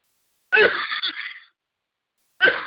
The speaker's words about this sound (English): God bless you. Sorry. Bless you, yeah.